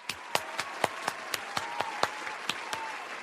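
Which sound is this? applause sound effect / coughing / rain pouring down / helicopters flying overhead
applause sound effect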